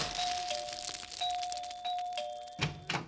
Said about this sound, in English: Watch out for falling plaster. Too late.